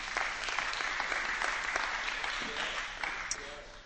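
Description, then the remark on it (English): An audience at a church service breaks into steady, sustained applause, a dense wash of many hands clapping at an even level for several seconds, with a few voices faintly mixed in. “You can clap.”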